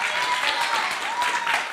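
An audience applauds, a dense, steady wash of many hands clapping at an even, fairly loud level throughout, with no distinct voices standing out.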